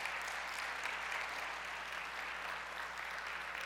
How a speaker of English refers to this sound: Clap for Isla and Trina Brucker, please. That's awesome.